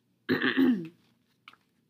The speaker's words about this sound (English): Sorry. I have to stop apologizing because I know that's as annoying as hearing me cough, but I feel like compelled to.